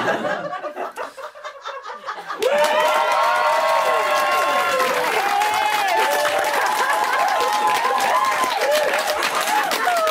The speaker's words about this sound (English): Forgive me while I take a water break. You know it's a nice crowd when a drink of water elicits applause.